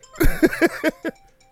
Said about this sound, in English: That never happens. Trying to run a podcast, got the phones ringing up.